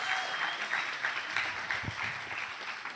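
A round of applause from a group, many hands clapping in a dense, steady patter that holds at an even loudness for the whole few seconds.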